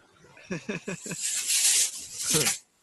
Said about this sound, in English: That was air freshener.